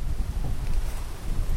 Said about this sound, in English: Heavy rains come often here this time of year.